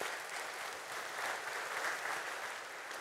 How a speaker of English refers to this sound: Yeah, you can clap for that.